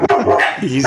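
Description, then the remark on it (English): Dogs bark loudly in a quick, overlapping burst, with sharp yips mixed into the barking, all within about a second. “Your dogs, they like that.”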